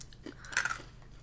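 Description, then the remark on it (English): Crunchy, sugary hard candy cubes in pink, green, yellow and orange being chewed, a brief burst of crisp crackling bites peaking midway, with no talking over it. “Very crunchy.”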